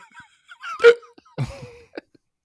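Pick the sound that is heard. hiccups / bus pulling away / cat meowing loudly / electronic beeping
hiccups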